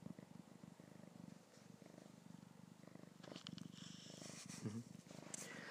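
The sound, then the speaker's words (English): A cat purrs steadily, a low rumbling rhythm that continues throughout with a soft pulsing texture and no talking. “Look at that, I'm forming a bond with the cat.”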